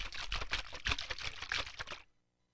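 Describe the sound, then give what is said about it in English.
Water sloshes and splashes around inside a container for about two seconds in irregular, fairly loud surges, then stops abruptly into silence. “And this has a ton of water in it.”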